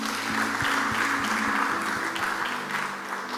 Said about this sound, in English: We have prayed for 15 minutes. Clap for yourselves.